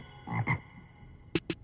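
A frog croaks in two low, throaty pulses, then after a short pause gives two sharper, raspier croaks in quick succession, alone with no talking.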